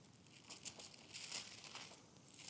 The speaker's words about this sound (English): Pastor Jake loves the sound of pages turning in a Bible. And perhaps we need to record some pages in the Bible for him so he can just listen to it over and over on his phone.